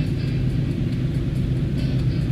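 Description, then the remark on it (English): Car tires churn through splashy slush on the left and right, making the car jump around, in a steady, dense rumble of road noise, with faint wet hissing splashes flickering above the low drone throughout. No one speaks. “You can hear the stereo of the splashy slush on the left and the right. It's making the car kind of jump around.”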